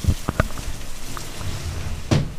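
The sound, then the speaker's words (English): A window being closed, with a couple of quick knocking clunks early on and a heavier thud near the end, over a steady soft hiss of pouring rain outside. “Closing a window.”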